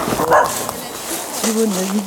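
Two dogs bark and whimper: a sharp, high yelp early on, then a drawn-out whining whimper that holds steady, with other vocal noise filling the background.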